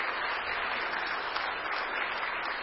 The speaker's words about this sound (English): Go ahead, just stand right where you are. Big round of applause for these folks.